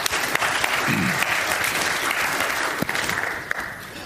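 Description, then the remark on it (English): An audience claps steadily, a dense wash of many hands blending into continuous applause that holds an even, fairly loud level throughout, with a few sharper individual claps popping out. “That wasn't like a burn him at the stake clap, was it?”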